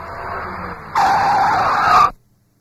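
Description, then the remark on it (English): A car's tires skid before a crash with a rising, shrill screech over engine rumble, loud, lasting about two seconds before cutting off abruptly into near silence. “Must have been an accident. See the black tire tracks? They lead to that corner.”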